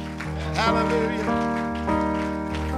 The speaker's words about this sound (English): Just keep on loving God. Keep on blessing his name. Keep on being faithful. Just remain. Just abide. Come on, y'all. Let's clap our hands.